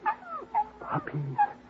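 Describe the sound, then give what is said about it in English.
Six newborn puppies whimpering under a water pipe in a string of thin, high, wavering squeals, several short cries overlapping one another, fairly quiet, with no talking. “What's that mooing sound, Al?”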